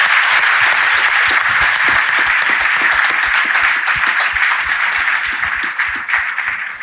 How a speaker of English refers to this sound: All right. Well, thank you guys so much for being here. We really appreciate this. Can we give everyone a round of applause?